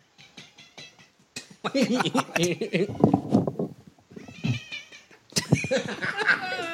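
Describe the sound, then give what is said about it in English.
A female cat meows repeatedly, with drawn-out, wavering yowls that rise and fall, while people's voices murmur in between and underneath the calls. “When she like wants attention, she'll like stare at the wall and meow at it.”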